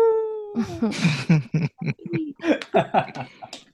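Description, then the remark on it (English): A person briefly imitates a wolf howl, a short, clear, falling tone at the start, followed by chuckling and lively talk from other voices. “She's able to fight off some of the urges in her dream, but she does dream of werewolves and wolves.”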